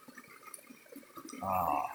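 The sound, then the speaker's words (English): Feet splash and slosh in cold water, a series of soft irregular swishes and drips that swell into a louder, fuller churn of splashing near the end. “Now, when your feet are in cold water, and you, like they are now, you hear the splashing, haha, the delightful sound, sort of warming up the water around me.”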